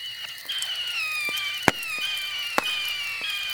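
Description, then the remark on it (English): A magical Star Shower spell fireworks effect: shimmering, high whistling tones sustain throughout, punctuated by two sharp crackling pops and scattered lighter ticks. No voices. “The magic user's eyes went wide as he gazed at the pyrotechnic display in the twilight sky.”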